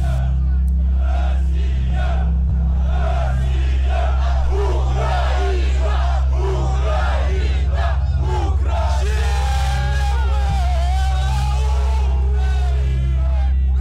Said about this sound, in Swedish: Samtidigt samlas även de proryska demonstranterna och skriker sina egna ramsor medan de viftar med den ryska flaggan.